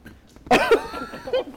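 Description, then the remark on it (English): One loud burp from a woman erupts abruptly and rumbles briefly before trailing off into a softer, throaty tail. There is no talking, just faint room noise around it. “She just did a sick burp.”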